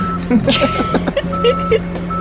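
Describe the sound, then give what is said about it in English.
A forklift's reversing alarm sounds as a steady, fairly loud electronic tone that pauses briefly and resumes, with vehicle engine noise underneath and some indistinct voices mixed in. “But as soon as you start backing it up, it makes this, like, loud beeping noise as you're doing it.”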